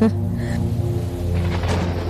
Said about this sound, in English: Okay, Mom, now the storm is getting really close. Shouldn't we take shelter?